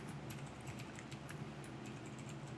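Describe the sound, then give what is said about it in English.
Soft, irregular clicking of someone typing on a computer keyboard, a quick scattered run of keystrokes, faint over a low steady hum, with no talking. “I'm typing in the start of this pod bomb thing.”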